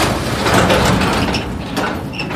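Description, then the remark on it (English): A garage door rolls open with a steady, loud rumbling grind that holds for about two seconds, with a few faint high squeaks near the end. No voices. “Davis stood 3 feet back from the garage door like he was expecting an army of rats and roaches to rush out when I opened it.”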